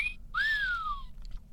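A whistled cell phone ringtone: a short rising note followed by a long, bright whistle that slides slowly downward, played clearly with no talking over it.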